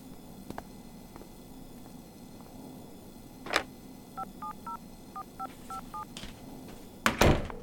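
A quick series of about eight short, evenly spaced dial tones beeps out a phone number, framed by a couple of soft clicks and a louder handset clatter near the end, over faint background hum.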